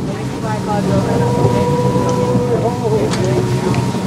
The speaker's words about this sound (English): steers the small boat out onto the water. The people on board will become quite chatty later, but for now, everyone is quiet.